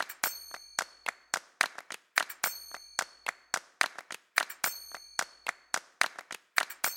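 Sharp, steady hand claps repeat in a quick rhythmic pattern, joined by bright ringing finger cymbal strikes that leave high shimmering tones, all over a faint low beat in the music.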